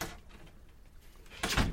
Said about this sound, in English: Shut that door good. Give it a slam. Pull it in.